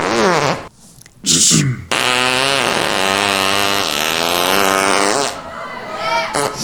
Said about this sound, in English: And we also had a farting prophet.